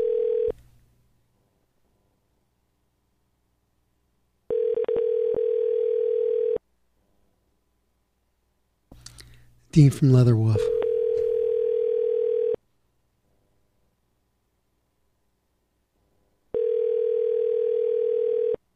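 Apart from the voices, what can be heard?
telephone dial tone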